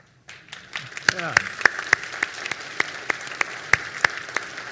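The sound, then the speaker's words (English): A church audience breaks into steady applause, a dense wash of many hands clapping, with a few louder, sharper claps popping out at a regular beat and faint voices mixed underneath. “Yeah, I'm going to applaud that too.”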